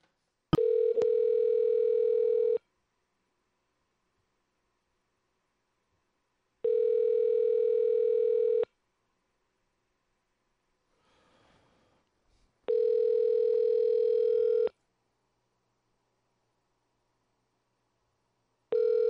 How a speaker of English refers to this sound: I don't understand these phone numbers that just keep fucking ringing and ringing and never go to anywhere.